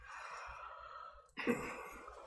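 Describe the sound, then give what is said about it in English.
Several people yawn at once on cue after a count of three, a breathy wash of overlapping exhales that swells suddenly partway through and then trails off, moderately loud, with no talking. “And when I count to three, I want everybody to yawn.”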